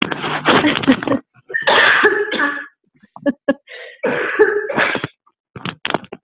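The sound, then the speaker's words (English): A coughing fit: several harsh coughs in bursts with short pauses between them, loud and raspy, trailing into a few smaller throaty coughs and breaths. “Sorry, I'm taking an absolute cough.”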